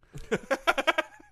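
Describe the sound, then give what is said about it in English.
A single quavering sheep bleat, its wavering tone pulsing several times in quick succession over about a second, clear with no talking. “There's sheep in your room.”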